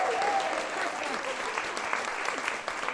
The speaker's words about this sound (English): So give a round of applause for all those girls coming all up. The girls.